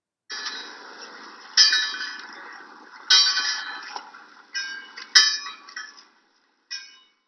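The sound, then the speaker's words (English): A lighthouse fog bell strikes about six times at irregular intervals, each clang bright and metallic with a lingering ring that fades before the next stroke. No voices accompany it. “Its fog bell giving three strokes in quick succession every 15 seconds in foggy conditions.”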